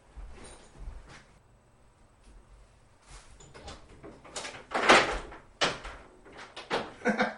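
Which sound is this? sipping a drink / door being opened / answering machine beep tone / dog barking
door being opened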